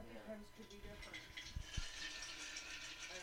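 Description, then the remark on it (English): Liquid pours steadily with a hissing splash while ice cubes rattle and clink, a couple of sharper knocks standing out midway; faint voices murmur in the background early on. “Oh my, you're really going to have the sound of the ice.”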